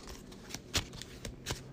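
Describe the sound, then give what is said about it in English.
A deck of cards being shuffled as a card is shuffled back into it, a quick series of soft riffling clicks and snaps over under two seconds, with a few sharper flicks standing out, no voices present. “I have to shuffle the winging it back into my deck.”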